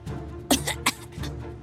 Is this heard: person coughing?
yes